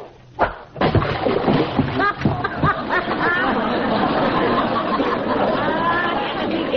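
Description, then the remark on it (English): A heavy splash from a fishing cast hits the water near the start, a sharp burst of spray, followed by several people chattering and talking over lapping water. “That was as big a splash as I ever saw.”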